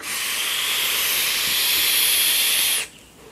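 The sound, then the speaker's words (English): A steady, airy hiss from a vape exhale, bright and fairly loud, holding evenly for nearly three seconds before cutting off abruptly. No one speaks. “And this is a really good vape, too.”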